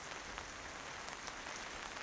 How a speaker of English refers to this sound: The canvas, pitter-pattering with rain, turns into a kaleidoscope of color.